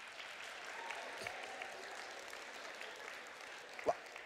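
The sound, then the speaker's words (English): Thin, scattered applause from an audience, a soft patter of hands that never builds, with one sharper clap standing out near the end before it fades out awkwardly. “I ain't gonna lie, that was probably one of the most awkward claps in the world.”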